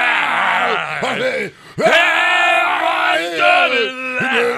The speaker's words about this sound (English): Why is he got to, like, drunkly yell every...